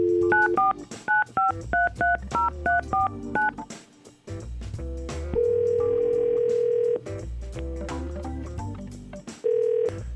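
telephone number being dialed

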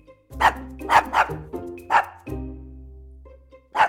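dog barking

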